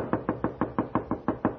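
pounding on a door

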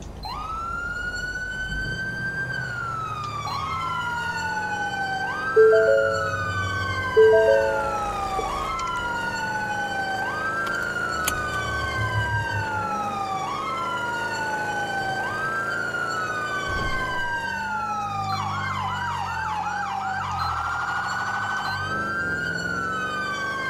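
police car siren

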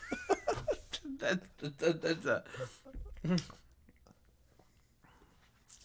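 cat vocalizing

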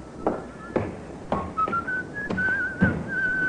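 man whistling a tune

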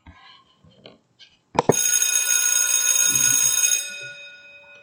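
bell ringing

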